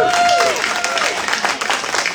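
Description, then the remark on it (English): Scattered, uncertain applause from an audience at a panel discussion, a broad crackling wash of claps that stays fairly even without building to a strong ovation, with a faint tonal whistle sliding down at the start. “I know you wanted to applaud, but she's doing so much that you just didn't know when.”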